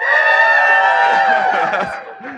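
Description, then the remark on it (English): A live audience cheers and whoops loudly, many voices blending into a sustained roar for about two seconds before it starts to fade. “cheer if you've never listened to the Here We Are podcast, so you have no idea what's about to happen”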